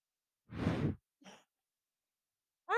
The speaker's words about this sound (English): Try that, keep breathing on the microphone.